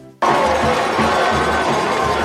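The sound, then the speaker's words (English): After a brief quiet moment, a loud stadium crowd roar bursts in and holds steady at Frank Muddy Waters Stadium as the Chargers take their first lead since the first quarter, a dense wash of cheering voices filling the space with no single speaker standing out. “We are back in Frank Muddy Waters Stadium, and if you can't hear it from the crowd, I don't know what you're hearing, because the Chargers have their very first lead since the first quarter.”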